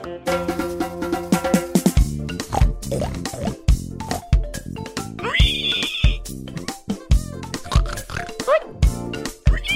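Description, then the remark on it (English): Several people imitate pig oinks, a dense run of short, loud, nasal grunts overlapping one another, with a few higher squealing sounds mixed in. “Sloppy little piggies. Little oink oinks.”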